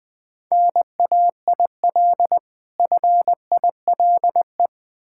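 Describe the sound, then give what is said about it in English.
Morse code beeps at a single steady mid pitch, a run of short dots and longer dashes grouped into letters with brief pauses between, spelling out "nail file" with no voices. “Nail file.”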